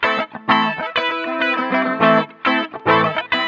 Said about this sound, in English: Let's listen to a few using the same input, which is this guitar riff from our Loopmaster sample CD of this episode, Hip Hop Progressions.